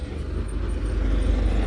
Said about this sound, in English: Sorry, a lorry's just going by.